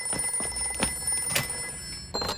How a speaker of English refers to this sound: Your telephone is ringing.